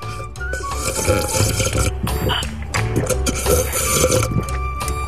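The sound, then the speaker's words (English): Water is poured into a glass, followed by a few wet gulps as someone drinks, with no talking. “Oh, I've got a dry mouth now. I can't do it. Just listen, and you'll find out. I'll have some water.”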